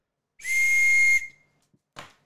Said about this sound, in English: I still have your train whistle.